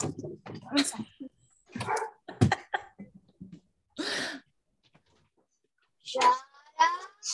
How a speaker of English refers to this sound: My dog's scratching at the door. Because he wants to hang out with you.